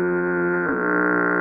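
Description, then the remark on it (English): A long, loud foghorn blast sound effect: one steady, droning low tone with a buzzy, brassy edge that sags slightly in pitch partway through and keeps sounding to the end. No one speaks. “Can I hear that honorable mention, Foghorn?”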